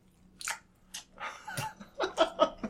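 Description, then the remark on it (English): Noisy, wet chewing with a series of crunchy, smacking bites in an uneven rhythm, growing louder toward the end, with a few soft breathy sounds between. “Just be like, oh man, that was good, but the chewing noises are fucking annoying.”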